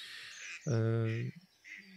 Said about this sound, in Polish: Bardzo mnie rozpraszają tutaj ale w fascynujący sposób mnie rozpraszają te różne ptaki, które przelatują nade mną. Mam wrażenie, że w ogóle tak nawiasem mówiąc, wtopiłem się trochę w przyrodę i one nie zwracają na mnie uwagę.